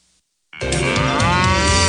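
A cow lets out a loud, sustained moo that starts abruptly after a brief silence and holds steady, clear with no talking over it.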